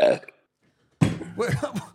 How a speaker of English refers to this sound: You just burped? Is that what you think of us?